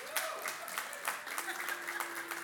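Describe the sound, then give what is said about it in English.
An audience at a worship service claps in loose, scattered bursts, sharp hand claps landing irregularly over a steady low hum, applauding for the Hokies. “Look, you can't even clap during worship, but you can clap for the Hokies, you know?”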